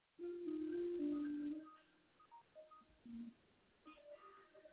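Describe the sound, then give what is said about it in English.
A television plays a simple tune of steady, held electronic-sounding tones, loud for the first second and a half, then continuing as softer, scattered notes. No one speaks. “And my TV is over here humming a tune.”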